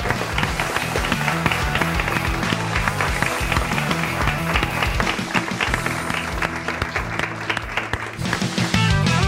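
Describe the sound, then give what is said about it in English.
A large standing audience applauds loudly and continuously for about nine seconds to welcome special guest Alfie Best, a dense wash of clapping with steady low tones running underneath and no voices. “So please could everyone stand up and give a huge round of applause and a warm welcome to our special guest, Mr.”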